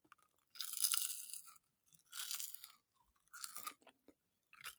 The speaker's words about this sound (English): I'm just going to pop it in. I'm still interested to hear the little soft crunch on it though. Yeah, here we go.